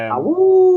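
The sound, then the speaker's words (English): A voice imitates a wolf-like howl: one short, loud call that slides down in pitch and then holds a steady, sustained tone for just under a second, with no other sound around it. “So you'd be playing along and suddenly like the little dialogue, like sort of communication thing at the side will just pop up and it'll be his face and he'll howl at you.”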